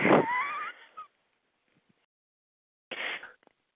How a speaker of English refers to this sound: All right. I sneeze.